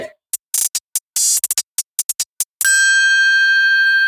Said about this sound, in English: while you're editing, cue the bell. Ding, ding, ding.